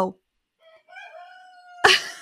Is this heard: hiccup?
no